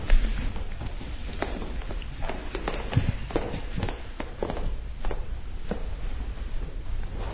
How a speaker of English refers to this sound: The creaking you hear is footsteps.